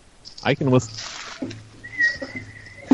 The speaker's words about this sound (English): I can whistle.